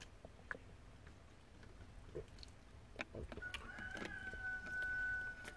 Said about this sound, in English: I hate that rooster. I hate that rooster.